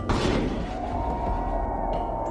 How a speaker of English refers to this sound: They rock back and forth on it now and pull it up from the ground. A group carries it over and thrusts it up against the doors, using it as a battering ram against the stone wall.